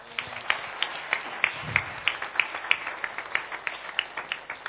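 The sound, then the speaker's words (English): An audience claps for the Lord together in a steady, even rhythm, the sharp claps repeating quickly and continuously for several seconds with no one speaking. “Shall we clap for the Lord?”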